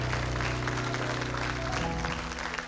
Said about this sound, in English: Do you believe that? Come on, can you give the Lord one more hand clap of praise?